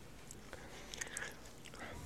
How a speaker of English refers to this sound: So, yeah, this is either juicy pear or booger. Yeah, it's green. Here we go. Let's hope I don't turn green. We're chewing.